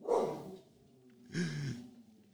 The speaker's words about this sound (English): The fucking creatures are here. Damn dogs.